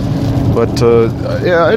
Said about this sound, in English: We've got rain. We've got some pretty loud truck noises. I've got the windscreen wipers going back and forth. It's pretty cruddy weather today.